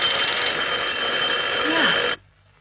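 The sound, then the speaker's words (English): A loud electric bell from room 36 of a hotel rings continuously, a harsh, steady, buzzing metallic clang that holds for about two seconds and then cuts off abruptly, leaving near silence. “That's the bell from room 36.”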